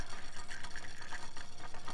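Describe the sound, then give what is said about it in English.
Water laps and sloshes steadily in a continuous wash of gentle waves around wooden poles at a small floating dock in Thailand. A soft rhythmic churn runs under it, and faint airy tones drift over it from small wooden flutes on the poles, played by the wind and waves. “I don't know how many small flutes, I think wooden flutes, to wooden poles sunk into the water around a small floating dock somewhere in Thailand, and the wind and the waves play the flutes.”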